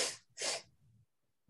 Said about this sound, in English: A little bit of sniffling.